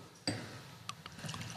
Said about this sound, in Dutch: En daar gaat het flesje open. Schenken we hem in.